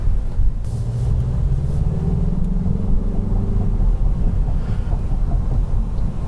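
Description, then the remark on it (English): A turbocharged 227-horsepower hatchback's engine hums steadily from inside the car as it drives in normal mode, a low, even drone with a faint rising pitch as it picks up speed, with no voices. “I will take us out right now. We're still in normal mode.”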